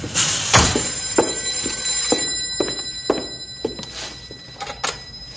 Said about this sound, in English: Oh, the telephone's buzzing.